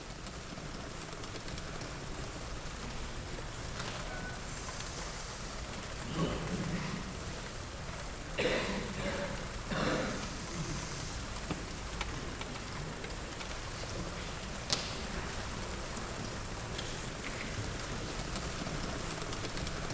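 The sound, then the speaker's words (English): A dense, continuous patter of almost 1,000 students typing notes on their laptop keyboards at once during a professor's lecture, blending into a steady rain-like clatter with a few slightly louder swells and no clear voices. “Almost 1,000 students typing out notes on their laptops.”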